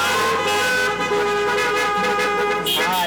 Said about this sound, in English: Can we give a few honks and a high beam?